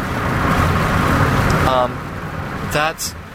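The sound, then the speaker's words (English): Rain falls in a steady, dense hiss for a couple of seconds, then softens as brief bursts of a man's voice cut in over the continuing patter. “It just started raining. The rain in the background.”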